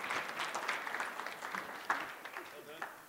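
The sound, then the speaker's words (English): An audience applauds warmly, a dense, steady patter of many hands clapping at a moderate level, with a few sharper claps standing out and murmuring voices mixed in. “Let's give you guys a warm applause.”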